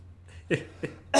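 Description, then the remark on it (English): Three short, harsh coughs in quick succession, with brief pauses between them and the last one slightly louder. “It still makes me cough.”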